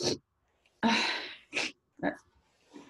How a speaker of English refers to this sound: Sneeze got me all messed up.